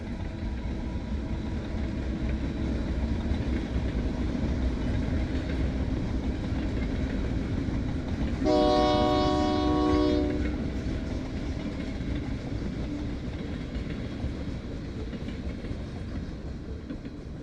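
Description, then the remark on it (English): A train rumbles steadily past, fairly close by, in the town of Bruno, a continuous low roar filling the whole clip, with a loud horn blast sounding for about two seconds midway through. “Even when I first started living here in Bruno, the train would go by and I'd hear it all the time, and now I don't even hear it.”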